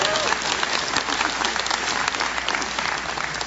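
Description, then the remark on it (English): Steady applause from an audience for a speaker's upcoming 40th wedding anniversary, many hands clapping in a dense, continuous patter at an even loudness for a few seconds, with no one speaking over it. “I think I deserve a hand clap on that, I think.”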